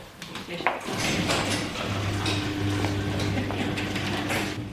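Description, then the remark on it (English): An electric garage door at a suburban home in a new subdivision rolls up to reveal bicycles, with a steady motorized hum and rattling, clanking mechanical noise that continues throughout, moderately loud. “the electric door to the garage rolls up to reveal the bikes they trained on to cycle the 150-kilometre Otago rail trail together.”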